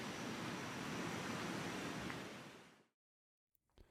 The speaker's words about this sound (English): Ah, the sound of the waves of Lake Michigan. It's funny to listen to these again and be brought back to that time where I lived right across the street from the beach, and it was a wonderful time in Rogers Park.